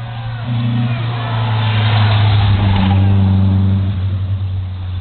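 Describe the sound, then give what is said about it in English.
A car engine in the distance hums steadily, its pitch climbing as it revs up midway, then settling again, with a broad rushing noise over the top throughout. “We can hear a car in the distance.”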